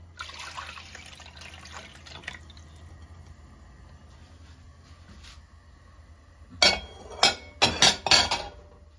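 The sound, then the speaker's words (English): 400 grams of orange juice pours into corn oil in a steady, hissing two-second stream, then a quiet stretch, then four or five sharp clunks in quick succession. No one speaks. “Now we're going to add into our corn oil our 400 grams of orange juice.”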